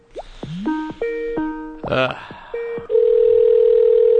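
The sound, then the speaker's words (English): A phone call being placed: a quick series of electronic dialing beeps and chirps, a short burst of connection noise, then a steady, fairly loud ringback tone holding to the end. “Lord, it's ringing.”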